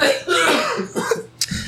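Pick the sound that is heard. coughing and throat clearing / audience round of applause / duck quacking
coughing and throat clearing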